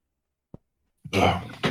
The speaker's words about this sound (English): Just, we've been, the whole family's coughing a lot lately. Just, I don't know. Bullshit worked its way into my chest.